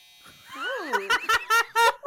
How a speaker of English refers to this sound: Perfect timing, dryer, laundry machine.